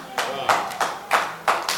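A church audience claps for the Lord together in a steady, loud rhythm, each burst of many overlapping hands landing roughly every third of a second, with no talking over it.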